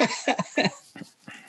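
A dog barks in a quick burst of several sharp yaps, then two more spaced-out barks that trail off slightly quieter.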